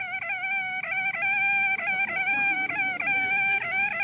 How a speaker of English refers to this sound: It is one of these old cast iron radiators that worked with water vapor, and every now and then it releases the pressure by blowing the excess through this little valve, and it makes this annoying oscillating whistle.